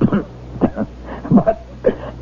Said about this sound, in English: And you're coughing again. You still have that cold.